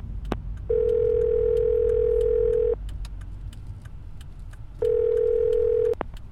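Two long, steady electronic car phone dialing tones, placing a call from inside a car, the first about two seconds and the second shorter, separated by a pause, over a low car-engine rumble with a few faint clicks. No one speaks.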